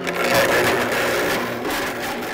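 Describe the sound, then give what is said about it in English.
A blender grinds cubic zirconia imitation diamonds in a Will It Blend? video, a loud, steady roar full of harsh rattling and crunching, its motor whine holding constant throughout with no voices. “We are going to blend cubic zirconia imitation diamonds.”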